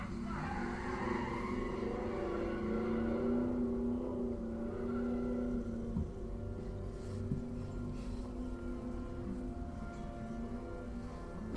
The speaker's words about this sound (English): Is that car ever going to shift? That's not how cool people drive cars. Rev that bitch.